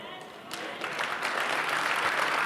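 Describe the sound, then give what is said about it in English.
A crowd applauds the speaker, many hands clapping in a dense, steady patter that swells slightly and holds for a couple of seconds, moderately loud with no voices standing out. “You see, you are clapping for me.”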